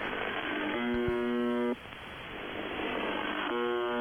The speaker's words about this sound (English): That's UVB 76, the buzzer. Neat. All right. It's live right now, if you'd like to listen to it.